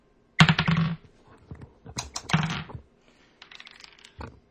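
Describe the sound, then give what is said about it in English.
A twenty-sided die clatters and tumbles across a hard surface, then more dice rattle in several quick bursts of bright clicking and rolling, with no voices. “But let's go ahead and give us a roll.”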